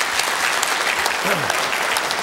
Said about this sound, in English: Thank you. And it said, give them a round of applause.